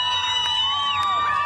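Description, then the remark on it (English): A large unarmed crowd chants "Go home" at Russian armored vehicles in the main square of the southern city of Kherson, many overlapping voices blending into a loud, sustained, continuous roar with no break across the short stretch. “Unarmed crowds chanting "Go home" managed to turn back Russian armored vehicles in the main square of the southern city of Kherson.”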